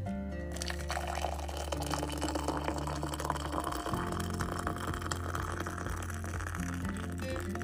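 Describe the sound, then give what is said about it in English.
Steady rain patters down in a dense, even hiss, with countless small drops ticking throughout and a low sustained hum running beneath. No one speaks. “Because this, my friends, is the sound of rain.”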